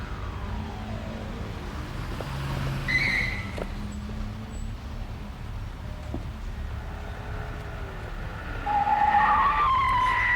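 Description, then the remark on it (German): Car tires screech as drivers brake hard at a city-centre intersection with a new traffic light that has a shortened yellow phase, a short squeal early on and a louder, longer one near the end, over a steady rumble of engines and street traffic on a sunny Saturday morning. “Das ist schon der fünfte, der seine Reifen abscheuert.”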